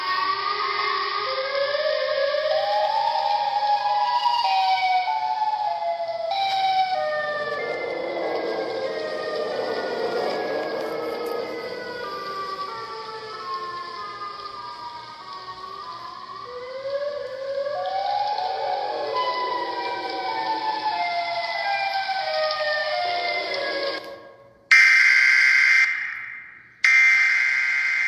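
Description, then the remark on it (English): A loud, eerie siren wails continuously, its warbling tones sliding up and down in layered harmonics, then cuts out abruptly near the end with a few sharp bursts. “Ooh, this one, Siren Head and AD audio. Ooh, that one must sound crazy.”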